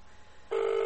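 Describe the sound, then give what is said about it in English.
After a moment of quiet room noise, a loud, steady phone tone cuts in and holds unbroken to the end, like a dialing or connecting tone on a phone call made on speakerphone. “I told him I was going to call him.”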